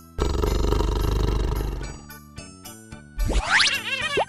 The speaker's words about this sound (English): Tiger.